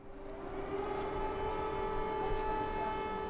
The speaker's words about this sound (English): As we filmed, sirens warned of another possible strike on Lviv.